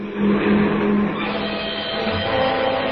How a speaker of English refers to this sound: Here comes a car.